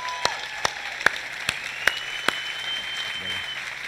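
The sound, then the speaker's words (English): Sparse applause from a church audience welcoming a former U.S. Navy SEAL speaker: a handful of sharp, evenly spaced claps, about seven over four seconds, ringing, with a faint tonal whine and hum underneath. “would you give him a round of applause?”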